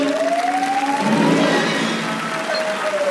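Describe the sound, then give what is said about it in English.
The original 1977 theatrical version of the krayt dragon scream sound effect: one loud, sustained wailing cry that glides slowly up and then sinks again in pitch, with a rough, hissy texture and no talking. “Congratulations to that original Kayat Dragon Scream.”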